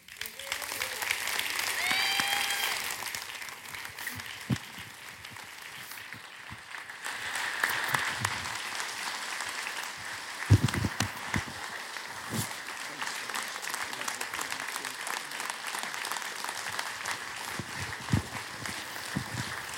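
A crowd claps steadily in sustained applause, a dense wash of hand claps with a few louder sharp claps standing out, continuing throughout at moderate volume without any talking.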